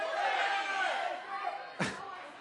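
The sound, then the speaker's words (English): An audience shouts out their favorite movies all at once, a dense jumble of overlapping yelling that fills the space, broken near the end by a brief sharp knock. “I said one at a time. Work together as a large group.”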